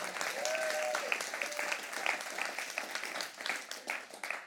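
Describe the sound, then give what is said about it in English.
A church audience breaks into steady applause during a sermon, a dense wash of many hands clapping at once, holding at an even level for several seconds with a few faint voices mixed in. “If you're going to clap, go ahead and clap.”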